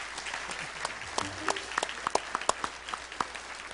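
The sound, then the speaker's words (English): A church audience applauds God during a morning service, a dense patter of many hands clapping with sharper individual claps popping out irregularly above the steady wash. “Let's give God a hand this morning.”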